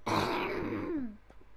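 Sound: cough away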